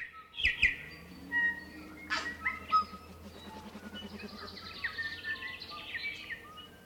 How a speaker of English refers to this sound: Thanks very much to Doc for today's lovely bird dawn chorus.